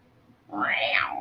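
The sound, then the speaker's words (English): A single drawn-out meow, imitated by a human voice, rising and then falling in pitch. It is fairly loud, begins after a short quiet pause, and has no other talk over it. “The cat makes me excited. You like the cat? Yeah. The cat that goes...”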